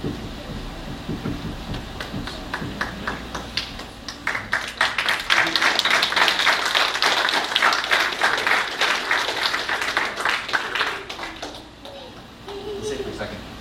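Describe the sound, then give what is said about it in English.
A church audience claps steadily during a service, building into a sustained wave of applause that swells loud and dense before gradually tapering off, with faint voices underneath. “You're going to clap again in a second.”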